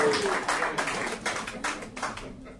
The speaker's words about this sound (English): Give him a round. Keep the applause.